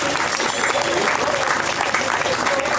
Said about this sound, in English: Big round of applause for our sponsors. Couldn't have done it without their support.